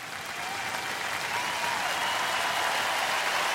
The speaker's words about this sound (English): Can we, in post, add a round of applause here? Just like, so excited.